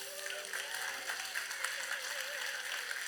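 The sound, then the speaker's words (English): Steady audience applause for the moms on Mother's Day morning fills the whole stretch, a dense wash of many hands clapping at an even loudness, with a few faint voices and a held musical tone underneath. “Let's hear it for our moms this morning.”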